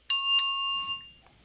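A small physical bell rings twice in quick succession, two bright metallic dings, leaving a clear sustained tone that slowly fades out.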